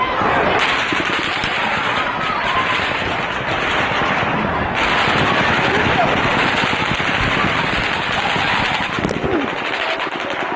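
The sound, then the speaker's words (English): Loud, sustained rapid gunfire from an AR-15 type semi-automatic rifle fitted with a bump stock, simulating fully automatic fire: dense, rattling bursts that run almost continuously, with a brief pause near the middle and voices faintly underneath. “All 14 AR-15 type rifles were outfitted with bump stocks that allowed semi-automatic rifles to fire rapidly, simulating fully automatic gunfire.”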